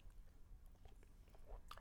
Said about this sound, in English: Man sipping on his beer.